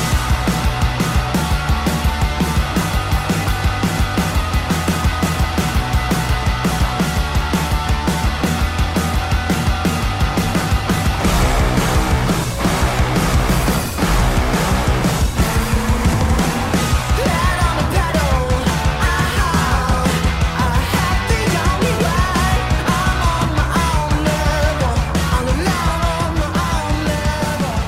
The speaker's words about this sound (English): I want you to stop shouting at your video game. Young bloke gets very angry with Forza Horizon. I could hear him in the first pod. You could hear him down the fucking street. Are they having a fight? No. He's just really angry with his controller